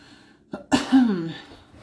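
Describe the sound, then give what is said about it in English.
A single forceful cough, brought on by playing around with breathing in: a brief catch of breath, then a sharp explosive burst trailing into a rough, voiced rasp that fades within about a second. “Oh crap, playing around with my breathing in like that. Now I gotta cough.”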